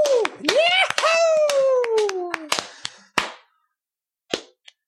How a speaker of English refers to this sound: Whatever. You're the winner. Round of applause. Yay! Let's go. Woo!